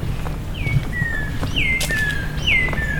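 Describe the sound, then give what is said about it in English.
Birds chirping in a forest where trees line a path, with three clear descending whistled calls at a steady pace over a soft, steady outdoor background hiss and faint rustling. “The birds make their presence known.”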